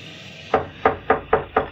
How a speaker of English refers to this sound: Our scene opens on a dark and stormy night in March. At the door of a tiny cottage on the outskirts of the city, a father, carrying a tiny bundle, raps cautiously on the door.